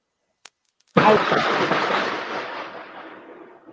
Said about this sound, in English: Is that thunder? Yes. And the sound cut out for a second. It was like an exclamation point from the universe.